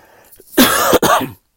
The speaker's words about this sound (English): And you guys pray for me with this cough. I'm still trying to get over the after effects of the flu.